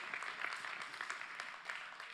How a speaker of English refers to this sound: I don't know, I can't hear if anybody online is clapping, but here there are a few.